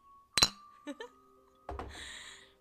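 Glasses clink together in a toast: one sharp, bright clink, a couple of lighter taps, then a final clink that rings on briefly, fairly loud with no talking.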